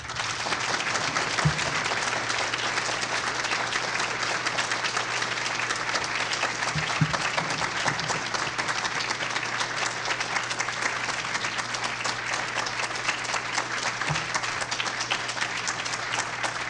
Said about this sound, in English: You might not like the talk. You better not applaud so long